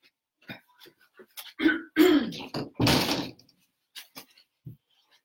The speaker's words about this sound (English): 1 sec, I'm just gonna shut the door.